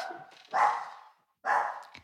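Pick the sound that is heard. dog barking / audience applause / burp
dog barking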